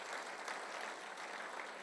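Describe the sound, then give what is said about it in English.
A crowd applauds steadily as a clap of praise to God, many hands clapping at once in a dense, continuous wash of sound with no distinct individual claps or voices standing out. “Can we give God a clap of praise?”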